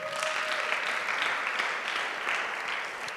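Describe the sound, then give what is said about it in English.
A crowd applauds steadily, dense clapping from many hands at a constant, fairly loud level throughout, with no one speaking over it. “Round of applause again.”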